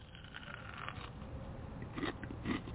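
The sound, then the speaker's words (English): Two crunchy bites into a crispy McDonald's hash brown, a second or so apart, with soft chewing and mouth noise in between and no talking. “I need a little bit of crunchy to crunchy to bite, bite, bite.”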